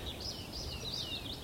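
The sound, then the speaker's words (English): A tree pipit sings faintly, a thin, high run of rapid trilling notes rising and falling over soft outdoor background noise, with no voices present. “You hear the tree pipits.”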